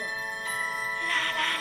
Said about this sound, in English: Yeah, it's the part where stuntman Mike is taking pictures of the girls coming from the airport. Mm-hmm. Zoe Bell, Rosario, and all them. Yeah. And that song is playing, and it's so creepy.